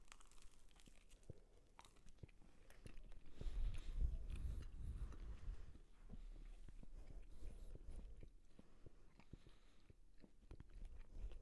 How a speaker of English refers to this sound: There's going to be a lot of chewing noises in this episode.